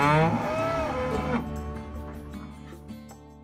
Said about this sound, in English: Okay, you're a farmer happily taking care of 86 head of cattle, dairy cows.